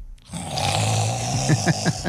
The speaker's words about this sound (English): You've heard like grandpa snore? Oh, you ain't heard nothing like Stanley the Bulldog snore. And he's on pain medicine, and it's a pain medicine snore.